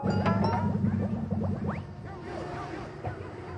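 Experimental noise music: a steady, buzzing low drone like a vacuum motor, overlaid with clattering textures and squealing rising chirps that thin out partway through, leaving a quieter hum.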